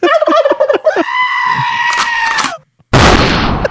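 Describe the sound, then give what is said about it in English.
A sheep-bleating sound effect: one loud, long, wavering cry lasting a couple of seconds, followed after a brief silence by a short burst of harsh, hissy noise. “What if she went with Papa Sheep?”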